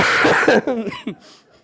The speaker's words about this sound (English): So I promise you, I don't have it as I cough on you today. Excuse me for a second.